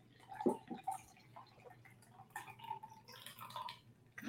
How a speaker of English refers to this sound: So we're going to cap that. Shake it up. And this had a 1/2 full of ice, so it gets nice and frosty. And now we're going to pour it into our glass. Hopefully it's going to kind of sunset.